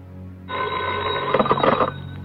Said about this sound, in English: Hello? Thank goodness you're home. I don't know what would have happened if you hadn't answered the phone.